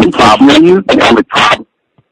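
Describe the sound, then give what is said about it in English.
A voice comes through an echoing phone line with a roomy speakerphone reverb, loud, speaking in three short bursts before cutting to silence. “The problem is that your line is echoing.”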